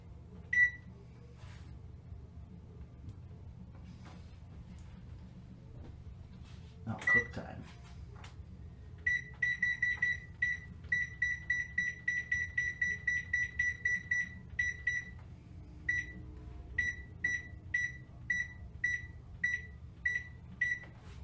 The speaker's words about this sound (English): Close it and set the timer to 30 minutes.